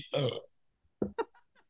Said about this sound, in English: I have a burp coming, so excuse me.